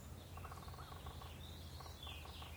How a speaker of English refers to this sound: That's a yellow-bellied sapsucker, doing that lazy tapping, establishing a territory. The is a tufted titmouse.